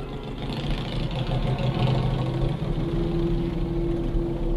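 A Harley motorcycle, ridden by cousin Mike, idles with a continuous, heavy low rumble that holds steady for several seconds, a faint droning tone rising out of it toward the end.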